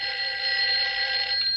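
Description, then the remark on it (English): A bedside telephone rings loudly, a steady, continuous bright trilling tone that holds without pause, with no voices over it. “He answers a bedside phone.”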